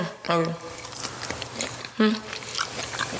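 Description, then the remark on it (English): Close, wet chewing right at the microphone, with irregular squishy bites and smacks over a few seconds, and brief bits of voice-like sound mixed in. “I'm sorry for chewing on the mic and shit.”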